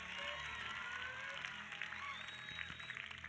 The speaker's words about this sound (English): Clap your hands and give God a shout of glory.